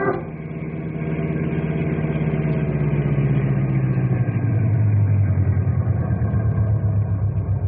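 A car engine idles steadily, a low, rumbling drone that grows slightly louder and deeper partway through, with no voices.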